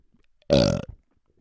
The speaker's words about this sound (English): The sound that sounds best on my new setup, I'm finding, is the belch. I love listening to myself belch, especially over these big headphones. It's absolutely fantastic.